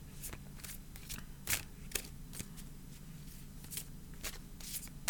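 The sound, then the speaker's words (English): A deck of tarot cards being shuffled, with quick crisp riffles and soft flicks in an uneven rhythm, fairly quiet, with no talking over it. “Intellectual cruelty, says the deck about the tweets. All right, now we shuffle again.”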